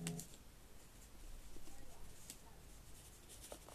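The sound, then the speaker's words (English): Soft scratching of a pencil writing a word down on paper, a few seconds of irregular strokes at a low level with faint background noise. “I'm gonna write that down because I don't know how to spell it”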